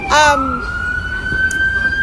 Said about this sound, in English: we're getting some sirens. Yes. This is real life.